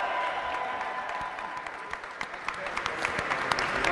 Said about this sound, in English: The president and CEO of the four-time World Series champion Boston Red Sox, Sam Kennedy. Give Sam Kennedy a round of applause.